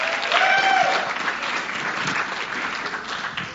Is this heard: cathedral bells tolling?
no